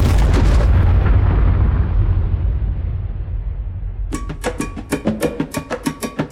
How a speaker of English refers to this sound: From just 10 miles away, the American public were given the opportunity to witness, from the safety of their living rooms, the raw power of a nuclear explosion.